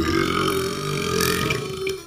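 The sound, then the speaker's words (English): A long, loud burp lasting about two seconds, rumbling low and then shifting in pitch partway through, as if in two stages. No one speaks. “There were like two levels like, to that burp.”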